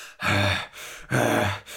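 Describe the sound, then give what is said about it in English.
Two loud, heavy panting breaths of a huge fairy, rough and voiced with an angry growl, with a short pause between them. A voice acts out the panting. “The huge fairy panted angrily.”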